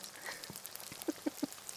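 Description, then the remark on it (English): Crackling sizzle of Kentucky Fried Chicken deep frying in hot oil, with scattered sharp pops over a soft hiss that sounds much like raindrops pattering on a surface. “Rain. Chicken. Rain. Chicken.”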